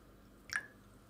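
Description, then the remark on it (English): A frozen salt water cube drops into a glass of salt water with a single quick plop and a short bright splash, quiet, over faint background hiss with no talking. “Now let's do salt water into salt water.”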